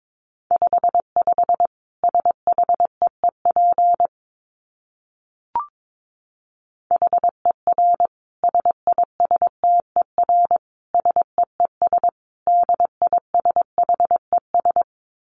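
Morse code sent at a brisk pace, around 22 words per minute: a single mid-pitched beep keyed into quick dots and longer dashes, grouped in bursts with short pauses and one faint click between.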